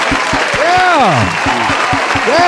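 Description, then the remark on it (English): Steady, rhythmic hand clapping at a brisk even pace, sharp loud claps repeating several times a second, with a person's raised voice calling out over the beat. “Let's clap it up for him.”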